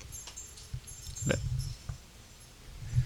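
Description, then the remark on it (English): A dog barks in the background, one sharp bark standing out among a few fainter ones over a low, steady hum. “That dog just doesn't know how to shut up and go sit.”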